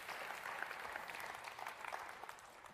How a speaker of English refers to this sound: And all God's people said, yes, you can clap too. Amen.